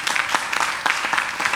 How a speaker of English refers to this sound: I don't like the way you are clapping, I have to close.